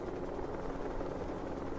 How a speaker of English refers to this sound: It is 4 o'clock in the morning. A helicopter flies low over the ice.